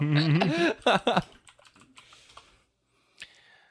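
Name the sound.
loud computer keyboard typing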